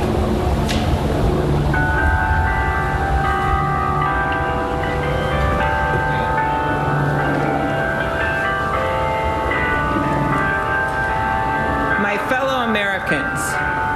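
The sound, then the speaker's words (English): Bells ring outdoors at a United States presidential inauguration in a steady, overlapping peal that starts after a moment and carries on throughout, fairly loud, with a constant murmur of background noise and indistinct voices underneath. “Better turn on that outside mic so we get them bells.”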